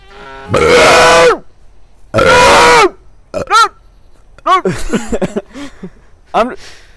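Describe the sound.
Two loud, drawn-out burps come close together, each lasting under a second, followed by a stretch of someone talking.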